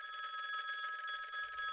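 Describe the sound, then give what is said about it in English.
A telephone at a catering business rings steadily, its bright electronic trill sustained through the whole short stretch, fairly loud with no voices. “When the phone rings, the answering side is Miami Mom's Catering.”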